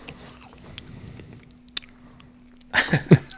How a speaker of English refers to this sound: She's chewing to the microphone.